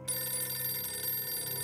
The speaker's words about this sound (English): Richard, phone! Richard! Fine, I'll get it.